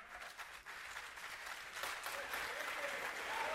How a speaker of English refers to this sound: Yeah, let me get my applause.